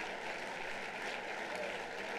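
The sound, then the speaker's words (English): A church audience claps steadily to thank the Lord, the dense patter of many hands blending into a continuous wash of applause that stays even in volume throughout. “Let's clap our hands and thank the Lord.”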